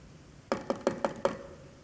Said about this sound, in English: when we knock and there's no answer, hey, is there anybody home? And if you are, would you please answer this door? Hello?